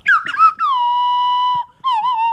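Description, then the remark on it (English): A slide whistle plays a short, wobbly rendition of Beethoven's Fifth: a few quick swooping notes, one long steady held tone, then a brief warbling note after a pause. It is loud, with no talking. “And now we present to you Beethoven's Fifth on slide whistle.”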